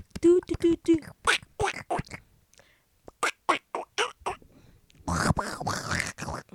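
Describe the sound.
A voice imitates the cartoon duck Donald Duck, producing a rapid run of raspy, quacking syllables with short pauses, ending in a louder, buzzier burst of duck-like chatter.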